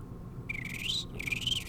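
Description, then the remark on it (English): A man whistles in imitation of a small bird: two quick, warbling high-pitched phrases with a brief gap between, clear over a low background hum. “Like I do like a little bird whistle.”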